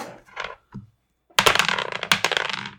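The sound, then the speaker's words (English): A brief soft rattle, a short pause, then a loud clatter of dice tumbling and bouncing across a table, sharp clicks piling up quickly before settling. “Let's roll for this.”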